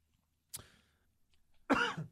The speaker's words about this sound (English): You know, it's funny because, dude, it's funny that you cough because I'm in my hand. I have my last cough drop.